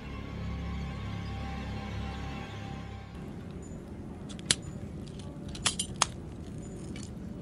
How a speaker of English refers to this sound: I don't like how much that glass is cracking, I'll be honest.